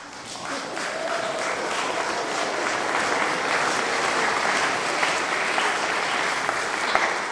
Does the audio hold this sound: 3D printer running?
no